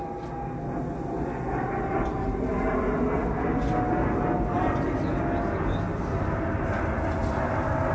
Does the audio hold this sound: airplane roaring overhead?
yes